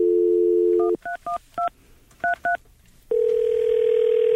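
A phone dial tone hums briefly, then seven quick touch-tone beeps are keyed in irregular bursts, followed by a steady, loud ringing tone that holds until the end, as a call is placed to a guest. No one speaks.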